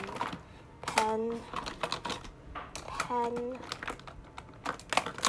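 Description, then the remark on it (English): Irregular plastic clicks and light rattling as pens are handled and dropped into a folder, with some crinkling of packaging and a couple of brief voiced sounds between them. “Pen, okay, put that in.”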